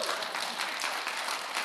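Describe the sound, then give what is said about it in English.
A crowd applauds steadily, a dense, bright wash of many hands clapping at a fairly even loudness with no voices rising above it. “If you're going to clap, just clap.”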